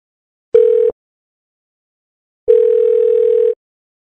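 A steady, pure telephone tone sounds twice while a call is being placed: a short burst, then a longer one-second tone after a pause. It is clear and fairly loud, with no voices.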